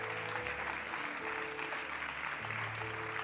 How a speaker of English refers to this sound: Oh, church, come on. Come on, give yourself a hand. You did it.